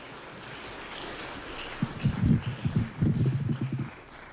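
A church audience breaks into applause after a brief hiss of background noise, a dense wash of many hands clapping for about two seconds to thank people, then fading out.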